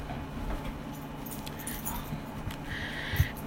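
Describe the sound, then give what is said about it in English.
A dog moves about in a room, with soft jingling and rustling, a faint whimper toward the end, and a small thump. Quiet, no one speaking. “I'm sorry if there seem to be interruptions, it's the dog.”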